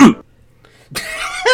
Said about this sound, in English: Not coughing too much. Oh yeah. I thought that was like the thing these days was coughing.